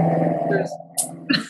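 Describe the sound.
A motorcycle engine drones with a steady, low, buzzing growl for over half a second as it passes along a street, then fades as a person starts talking.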